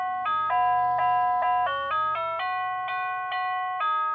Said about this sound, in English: I like your doorbell. Well, the north door plays National Anthem, and the south door plays Dixie.